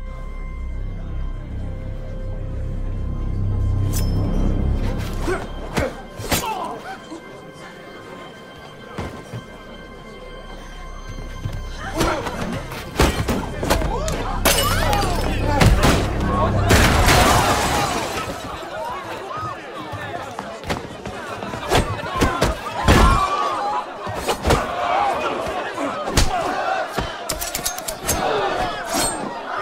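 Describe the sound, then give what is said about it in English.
A movie scene with Tom Cruise of sharp slashing and clashing impacts amid a shouting, gasping, horrified crowd, with loud chaotic bursts, metallic clatter and cries rising and falling over about thirty seconds. “That is just slashing and the crowd shocked and horrified as Tom Cruise.”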